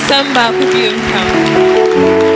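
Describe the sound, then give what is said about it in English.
An audience claps their hands together in a dense, steady wash of applause, with voices and sustained musical tones running beneath it throughout. “I think your clap can be better.”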